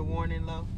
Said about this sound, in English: The warning low bridge. Yeah. Yeah, but we not in the truck. So I know, but your phone, how'd you get your phone to that? I don't know. It just said that.